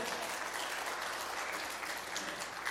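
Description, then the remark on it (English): An audience claps steadily, a dense, even wash of many hands that stays loud and sustained throughout with no voices over it. “Right, so give Adam a big round of applause.”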